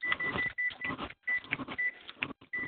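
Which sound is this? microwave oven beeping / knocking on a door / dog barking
microwave oven beeping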